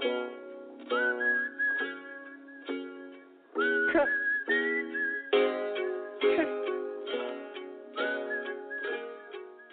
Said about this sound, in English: A little whistling at the end for Smoop.